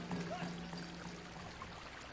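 Steady, continuous rush of flowing water of Oak Creek at Red Rock Crossing in Oak Creek Canyon near Sedona, Arizona, fairly quiet and even throughout, with a faint low hum briefly noticeable near the start.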